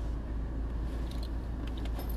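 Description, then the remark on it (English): A faulty car engine idles outside with a steady, low rumbling drone, and faint metallic rattles and clinks cut in now and then. No one speaks. “I think I figured out there's something wrong with that dude's car.”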